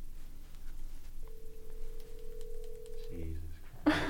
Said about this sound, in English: From your phone. Leave a detailed description of your dream at the tone. Sounds good. And there's the tone. Okay. And then you hang up.